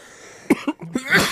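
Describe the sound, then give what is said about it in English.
A short burst of several harsh coughs in quick succession after smoking a pipe, ending in a raspy, breathy hack, with no talking. “But it made me cough.”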